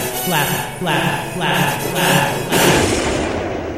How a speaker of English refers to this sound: Bless you. Bless you. Bless you. Whoa, God, who is that? That's my wife. Hey, wife. Shut your sneeze trap. Tell her to put the snuff box away.